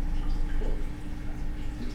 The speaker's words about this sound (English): I hear water running. Water. Are you taking a piss while you're piss talking to us?